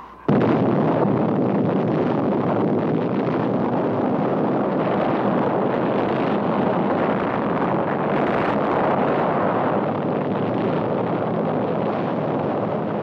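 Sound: atomic bomb test explosion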